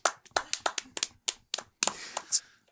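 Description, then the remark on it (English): A dozen or so sharp hand claps in an uneven rhythm, then the clapping blurs into a denser patter that ends with a brief high-pitched squeal. No one speaks. “Yeah, we got clapping going on.”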